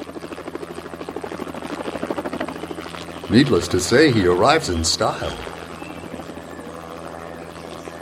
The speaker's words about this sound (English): After his bags are unloaded, the helicopter lifts into the air and sails off into the sunset.